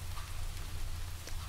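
Steady rain pours in a continuous soft hiss, with a low rumbling undertone and occasional brighter drop taps, at moderate volume and without voices.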